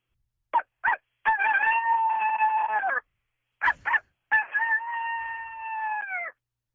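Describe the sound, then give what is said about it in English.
A person imitating a coyote call: twice, two quick sharp yips lead into a long, loud, wavering howl that slides slightly downward at the end, with nothing else heard. “Can you – is it too hard to do a coyote, or what, do you think it wouldn't sound good over the phone?”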